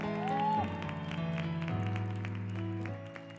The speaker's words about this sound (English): You're going to have to do better than that. I need to hear you clap right through there.